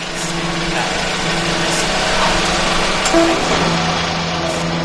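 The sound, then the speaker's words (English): A truck engine hums and idles steadily, a continuous low rumble with a faint mechanical whine running through it, loud and unbroken for the whole stretch. “That's the truck?”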